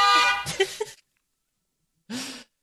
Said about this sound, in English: Let's just play a car honking noise.